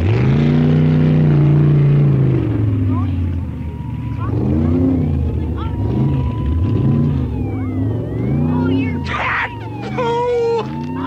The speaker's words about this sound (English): So here is one of the characters berating this car until it drives away.